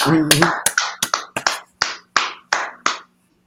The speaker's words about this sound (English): Round of applause for everybody involved in that, man.